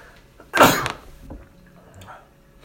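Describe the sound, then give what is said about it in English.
A single sharp sneeze bursts out loudly, a broad noisy blast lasting about half a second, followed by faint rustling and quiet background sounds. “It makes for great podcasting, just sneezing everywhere.”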